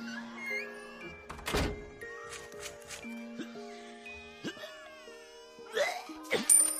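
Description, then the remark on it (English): A single heavy thunk of a door being shut, fairly loud, set against soft sustained musical tones and a few light chimes, with no one speaking. “Ah, close the door! You're letting in a draft!”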